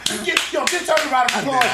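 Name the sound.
hand clapping applause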